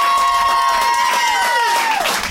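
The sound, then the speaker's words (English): A live audience claps and cheers loudly and continuously, with high whistling whoops gliding downward over the steady wash of applause. “Clap it”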